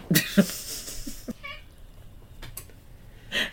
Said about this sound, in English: Our cat making comments on the Boogeyman movie over here.